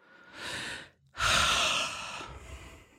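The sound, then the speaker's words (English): A short breath in, then a loud, drawn-out breathy gasp at hearing the name of a weight-loss program, trailing off into a softer exhale, with no talking. “I gasp at just hearing the name of the program.”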